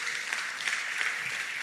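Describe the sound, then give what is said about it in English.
A crowd applauds steadily, many hands clapping in a dense, continuous patter that stays fairly loud and even throughout, with no voices rising above it. “Clap for me, clap for me, clap for me.”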